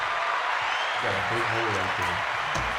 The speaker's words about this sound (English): You know what time it is. Come on, clap for me.